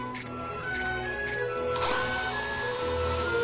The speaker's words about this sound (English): Here we go with more More tinkery buildy noises. More tinkery noises. I don't know why he'd be hammering on wood to make a robot, but hey, whatever works.